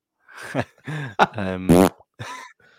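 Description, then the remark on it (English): Loud fart noises come in several short bursts over about two seconds, ending in a longer buzzing rasp, mixed with grunting vocal sounds. “Oh, you farted just as I brought up Linder's comment.”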